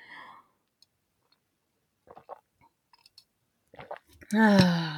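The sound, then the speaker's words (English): Quiet sips of tea: a few soft slurping and clicking mouth sounds spaced across the silence, then a louder voiced exhale like a satisfied sigh at the end. “I'm going to drink a sip of tea.”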